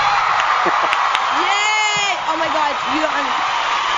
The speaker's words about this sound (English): Yay, we're going to give him some crowd cheers.